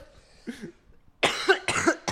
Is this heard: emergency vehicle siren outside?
no